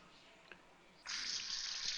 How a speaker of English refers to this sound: Running some water in my hands.